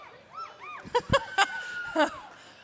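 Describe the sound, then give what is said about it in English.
High-pitched voices of children from the Solomon Schechter School of Queens whooping and cheering at a parade in rising-and-falling cries, punctuated by several short, loud shouts or claps, moderately loud over a steady background murmur. “I hear cute kids.”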